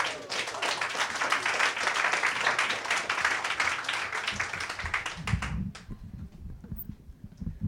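A crowd at a poetry reading applauds a poet being introduced, with dense, steady clapping for about five seconds; then the applause cuts off abruptly, leaving low murmuring and a few scattered claps.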